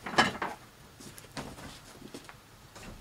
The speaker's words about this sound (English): It's raining outside. It never rains here. So what I'm going to do, give me a second. I'm just going to go and close this window here.